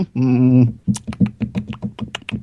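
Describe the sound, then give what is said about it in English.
A short hummed vocal tone, then a quick run of crisp clicks from typing on a computer keyboard, keys tapped in an uneven but steady rhythm. “I just enjoyed the fact that as you were doing this, and you weren't thinking of anything as I was typing it.”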